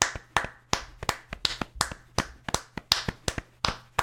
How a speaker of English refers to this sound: My clapping was muted because I'm wearing gloves. It's still clapping. And I like that we had two. We didn't even plan this. It's a raw feed. But we had two distinct clapping sounds.